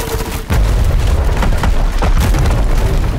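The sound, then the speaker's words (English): A heavy booming crash erupts after a brief pause as a large pirate ship with a metal ram on its front smashes into a ship, followed by sustained rumbling low-end impacts and cracking bursts as the ship rips apart, loud, amid battle noise. “one of the large pirate ships with a metal ram on its front smashed into the ship Ira was on, causing it to rip apart”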